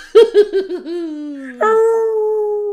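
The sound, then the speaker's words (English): A wolf howl sound effect, loud: a quick burst of yipping cries slides into a long, falling howl, then a second steady, drawn-out howl rings out. “I like the wolf whistle, that's great.”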